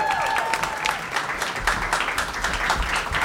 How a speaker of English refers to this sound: Mild applause for your ability to speak into a microphone, Charles.